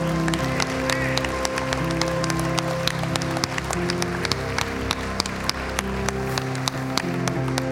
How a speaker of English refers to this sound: Come on and give my hand clap of praise in this house.